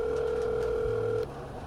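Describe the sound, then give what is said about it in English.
A steady electronic phone ringing tone, heard after a call is placed, holds for just over a second, then cuts off abruptly, leaving a faint low hum. No one speaks. “and that continues for a few more tones.”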